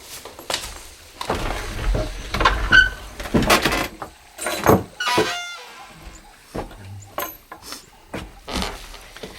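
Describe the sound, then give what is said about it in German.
An old, rotting wooden barn door is carefully eased open with a series of dry creaks, scrapes and rattles, moderately loud, in uneven bursts over several seconds with no voices. The barn stands in hilly pasture southwest of a big city. “TKKG pirschten sich langsam an den Unterschlupf heran und öffneten vorsichtig die vermoderte Tür.”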